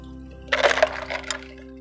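A short wet slurp of liquid being sucked up, a few quick gurgling pulls over about a second, moderately loud against a steady low hum, with no talking.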